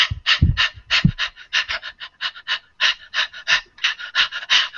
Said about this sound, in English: And then, like... there's a little bit of the puppy breath that kind of permeates the listener's ears and makes them like it more. Check this out, like, just for the background.